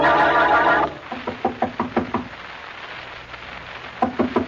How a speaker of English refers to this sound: Oh, Blackie, maybe Mrs. Worthington isn't home. Well, Mary, we've knocked on the door enough times to be the police. Let's try going in and see.